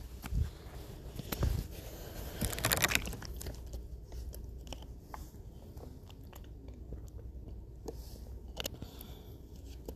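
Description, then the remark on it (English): Someone drinks water, with a few loud gulping and crinkling bursts in the first three seconds, then softer swallows and faint mouth clicks. No one speaks. “And let me just give myself a quick water break.”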